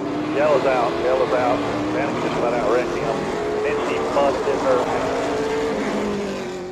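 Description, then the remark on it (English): Engines roar continuously at high revs, a steady loud drone with rising and falling whines layered over it, like race cars running, with some speech-like sounds mixed in. “Drivers, start your engine!”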